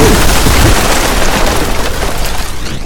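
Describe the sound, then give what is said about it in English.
A massive blast of magic fires off inside an adobe house, erupting with a loud, booming roar, its dense low rumble and crackling noise sustained before slowly fading over a few seconds. “you are knocked flat onto your stomachs as this massive blast of magic fires off inside the house.”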